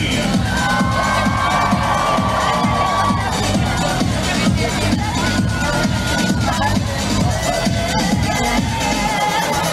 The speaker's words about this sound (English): Ladies, can you feel it? 30 seconds to New Year's Eve. So let me hear you scream.